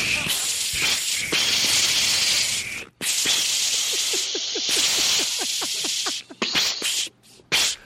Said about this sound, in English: Why did you just spray me with seltzer?